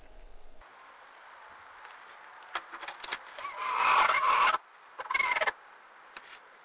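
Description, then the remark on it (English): A hen, disturbed in the middle of laying when the egg door is opened in the morning, gives a low, grumbling, raspy call that swells into a harsh, drawn-out squawk, followed by a shorter grating burst and a few soft clucks. “She was in the middle of laying, and she was not happy that I had opened the door, and so she made this sound.”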